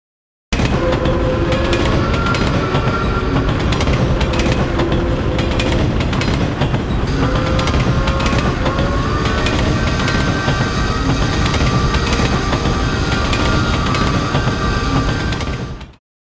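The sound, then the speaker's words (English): A Santa Fe train rumbles steadily past on the railroad tracks by a house, loud, with dense low rolling noise, metallic clatter and faint high squeals throughout, fading out at the very end. No voices. “One of the worst things about the house that I bought is the noise from the train tracks.”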